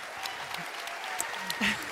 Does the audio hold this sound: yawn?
no